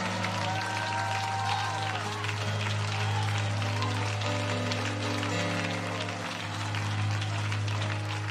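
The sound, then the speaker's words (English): An audience claps and shouts unto God together in a dense, continuous wash of applause and raised voices, steady and loud throughout, with a low sustained hum running underneath. “Come on, clap your hands and shout unto God with a voice of triumph.”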